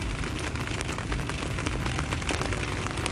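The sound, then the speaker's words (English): Heavy rain pours down steadily outdoors, a dense hiss full of crackling drops hitting surfaces, loud and unbroken with no voices. “Isn't it crazy that I'm just sitting out here with rain pouring on me from the skies?”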